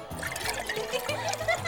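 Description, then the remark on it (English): A drink being poured into cups, a steady trickle and splash of liquid lasting a couple of seconds over a low background murmur, as a young man fills cups at a celebration. “The young man groaned and obliged, filling the cups belonging to a gaggle of giggling sea nymphs.”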